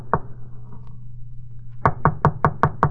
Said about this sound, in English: I got to apartment 1B. I knocked.